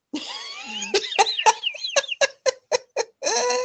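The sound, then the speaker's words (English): A voice imitates seagull squawks as the character Buttons speaking Seagull: a drawn-out screechy call breaks into a rapid run of short, harsh squawks, then ends with one longer, steady cry. “My favorite part about Buttons is that he speaks Seagull.”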